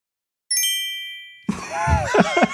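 A single bright text-message notification ding sound effect rings out and fades over about a second, then voices begin talking over a busy, lively background.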